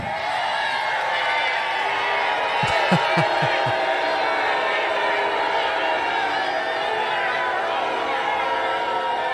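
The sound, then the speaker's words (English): A large MAGA rally crowd roars in a steady, dense wash of voices, with jeering shouts and boos sustained throughout as Senator Lindsey Graham is heckled on stage, cuts his speech short and leaves; a few short thumps stand out briefly partway through. “Here is Lindsey cutting it short after getting heckled the entire time and running off of the stage.”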